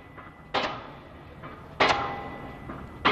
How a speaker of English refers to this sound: The steel piles you hear slamming into the ground are shaking things up in North San Jose. Sound of progress.